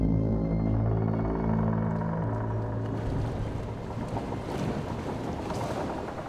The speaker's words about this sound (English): So as Steelbeard is preparing to dive, as you can hear the wood creak and water begin to rush into the hole below you